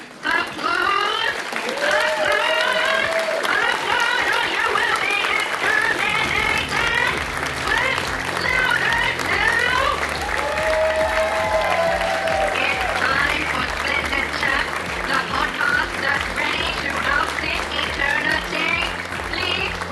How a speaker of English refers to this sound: Audience will start applauding.